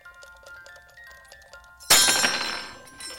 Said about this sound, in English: And smashed music boxes looking for clues.